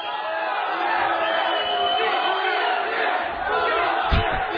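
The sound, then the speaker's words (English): A large crowd at a live show in Portland roars with loud, sustained cheering and yelling that fills the whole stretch, a dense wall of voices with occasional louder shouts rising out of it. “And I have to say, this was the loudest that the crowd's been the entire time.”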